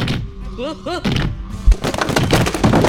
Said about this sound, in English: I've knocked over a bookshelf.